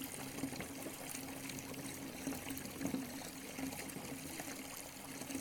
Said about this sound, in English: Envision this bath, your sanctuary of calmness, scented with your favorite aroma. Your head rests on a soft towel while you listen to the gentle sounds of running water.